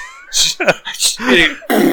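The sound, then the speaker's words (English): A loud, explosive sneeze, its breathy noisy bursts mixed with strained voiced sounds, spread over about two seconds and ending in a final sharp burst of air. “Oh, God! Bless you.”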